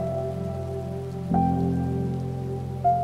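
Steady rain patters on a surface in a dense, continuous wash, with a low, constant hum underneath and a brief swell in loudness partway through. No voices.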